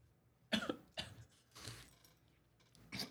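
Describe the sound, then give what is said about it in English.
A few harsh, raspy coughs from someone who just swallowed a crumb, in an uneven series, four bursts with brief pauses between them, the third one softer and drawn out, with no talking. “I did the same thing. I just swallowed a crumb.”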